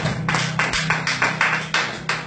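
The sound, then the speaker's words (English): An audience claps for Jesus in a sustained burst of applause, a dense, bright wash of many hands with a steady low hum running underneath, swelling in repeated loud pulses. “Clap for Jesus.”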